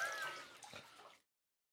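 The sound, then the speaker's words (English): Water pours and sloshes in a steady splashing rush with a brief heavier slosh midway, lasting just over a second before cutting off abruptly into silence. “What's the temp of that water?”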